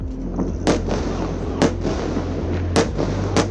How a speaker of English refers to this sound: That's how it sounded across Israel this morning as Hamas launched a surprise assault on the country, firing thousands of rockets and entering Israel by land and sea, and by air using paragliders.